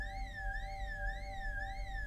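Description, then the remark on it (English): The car alarm of a car next door wails steadily and loudly, its electronic pitch rising and falling in a quick repeating whoop about twice a second over a low rumble. “What is that noise? Next door's car alarm.”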